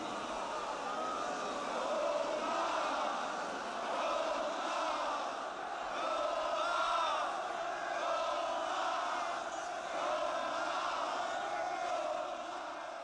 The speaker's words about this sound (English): We looped in Omar, Omar chants from the crowd, but what they were really yelling was, we want food, we want food, we're starving.